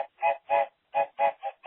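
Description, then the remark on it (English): A voice imitates a train, making a quick, rhythmic run of about seven loud chugging bursts with short gaps between them. “Train alert.”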